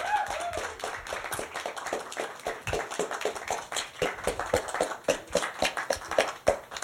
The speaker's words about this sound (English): So how about, before we start, how about a nice, generous round of applause for Michael Close, Dr. James Allen.